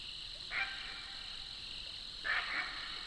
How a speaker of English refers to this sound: Those are the throaty croaks of a great blue heron.